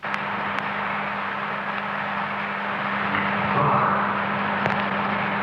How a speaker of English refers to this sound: The humming in the background is the fans of electric heaters warming the building.